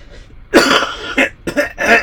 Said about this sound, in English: Sorry, gotta clear my throat.